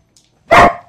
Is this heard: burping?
no